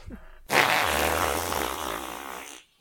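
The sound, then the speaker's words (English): A voice does a long, loud flapping fart imitation, a wet buzzing raspberry lasting about two seconds before cutting off abruptly, with no talking. “immediately puts it on and almost immediately just lets out just this ripper of a fart.”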